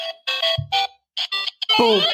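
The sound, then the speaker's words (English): Bright, beeping chiptune music from the first level of Super Mario Brothers plays alone on a game console: short bursts of square-wave melody notes, a brief low buzzy bass note, then a quick rising electronic glide. “It's sound from the whole first level all the way through.”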